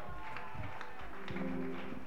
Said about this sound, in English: Your hand clap is too weak. The bigger your hand clap, the greater your blessing. Put your hands together for Jesus.